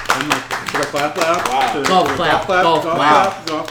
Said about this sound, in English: Clap.